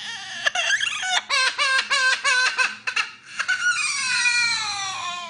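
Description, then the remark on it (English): A parrot imitates a crying baby: a rapid run of loud, high, sobbing bursts, then one long wail that slowly falls in pitch. No one speaks. “It sure sounds like a baby, but guess what it is? It's a parrot.”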